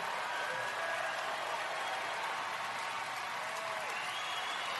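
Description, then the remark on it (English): A large audience claps loudly and continuously, a dense, steady wall of applause that fills the whole stretch without letting up, like a standing ovation. No one speaks over it. “He gets a standing ovation when he says F Trump.”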